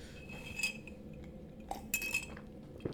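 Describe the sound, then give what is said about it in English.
A coffee cup clinks several times while someone sips coffee, light ringing taps against a dish, scattered irregularly over a low background hum, with no voices. “Oh, let's sip this coffee. We still got some coffee.”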